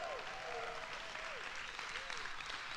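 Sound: applause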